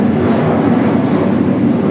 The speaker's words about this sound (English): Well, there's some loud noise. Yeah, it's an airplane. Burbank Airport.